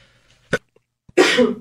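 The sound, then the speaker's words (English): A short sharp intake burst, a brief pause, then a loud, explosive, hissy sneeze lasting about half a second, with no talking around it. “Bless you.”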